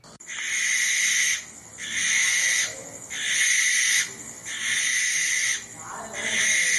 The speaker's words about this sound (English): Next, the barn owl.